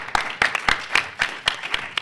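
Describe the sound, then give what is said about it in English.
Hands clap in a steady, even rhythm, applauding a panelist's introduction, about eight sharp claps in two seconds, moderately loud with a faint hiss between them and no voices. “Well, I've been applauding both the top and bottom of the introductions.”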